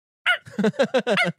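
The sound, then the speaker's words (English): A person mimics a bird-of-paradise call with about six quick, nasal, honking bursts in a rapid rhythm, fairly loud, with no other speech. “I want to be the black bird Panther? That like flops its wings out and then has a little neon smile and it's like.”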